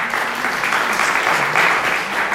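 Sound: audience applauding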